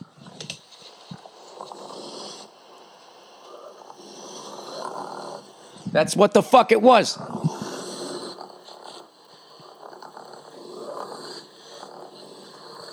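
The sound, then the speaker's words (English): A raccoon gives one short, raspy growl lasting about a second, rough and snorting, louder than the steady background hum. A man speaks before and after it. “You got a little fucking growl, you know, which I know probably doesn't sound like much to you as you're sitting there,”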